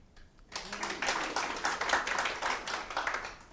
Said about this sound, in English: clap, whoop, whatever it is now. They believe you.